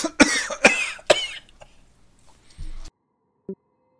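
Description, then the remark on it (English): A man's voice imitates coughing coming from behind some crates: three harsh coughs in quick succession, followed by a short low throaty grunt and a faint final sound. “All of you hear coughing behind the crates.”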